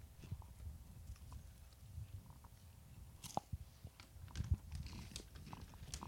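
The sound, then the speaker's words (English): Crunchy Cheez-It snack crackers being chewed, an irregular series of crisp crunches and bites over a quiet background, with no one talking. “You say that, and then I'm about to eat some Cheez-Its. All right, come on. What are we doing? We can't be doing this. We're enjoying life. Hear that lettuce crunch.”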